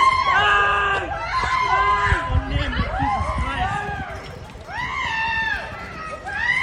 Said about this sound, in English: Oh my god, listen to those beautiful screams. Listen to those beautiful fucking screams. That's true horror. That's true horror right there.